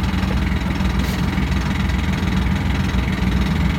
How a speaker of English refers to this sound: Maybe it's that car beside us making all that noise.